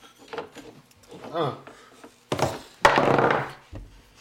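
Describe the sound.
Talking is followed by a sharp wooden thunk, then a loud clattering rattle of large dice, rolled for a sleight of hand check in a tabletop game, tumbling across a hard tabletop for about a second before settling with a final knock.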